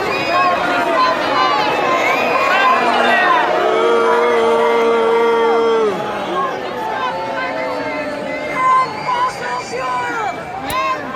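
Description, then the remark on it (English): A large crowd boos and shouts together in a dense, continuous roar of voices, with sustained jeering tones and scattered yells rising over the din for the whole stretch. “People are booing at them, is what you hear.”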